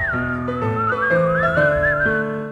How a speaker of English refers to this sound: When you're feeling in the dumps, don't feel silly chumps. Just press your lips and whistle, that's the thing.